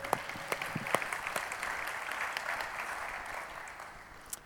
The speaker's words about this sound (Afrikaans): Dit is altyd lekker om saam met julle te worship. Kom ons gee hulle 'n lekker hande klap.